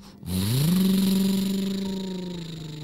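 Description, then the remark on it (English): A truck engine starts up and revs, its low growl climbing in pitch and then holding steady and loud before easing slightly as the vehicle pulls away. No voices. “They were able to drive the truck back safely to Frankie's house.”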